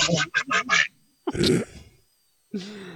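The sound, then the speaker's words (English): A person does a raspy Donald Duck voice, a quick burst of squawky quacking syllables followed by a longer garbled squawk and a brief trailing sound, loud. “Donald Duck's like, what the fuck was that?”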